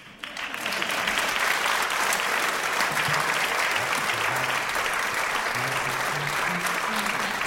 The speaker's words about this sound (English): Thank you. Please clap.